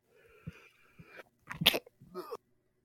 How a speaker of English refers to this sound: Bless you. Sorry, I tried to mute in time. I was like, did he sneeze? Yeah, no, it's it was super windy yesterday, so my allergies are killing me.